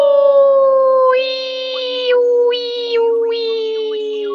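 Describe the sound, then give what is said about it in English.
A spooky, sustained Halloween wind howl holds steady and loud, with a higher, shriller wail swelling in three times over the drawn-out tone. No one speaks. “The wind howls blurg.”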